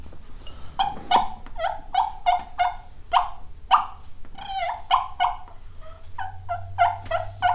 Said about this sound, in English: When the turkey's coming, like I said, they're always making noise. You know, when they're coming, that Tom's coming looking for you.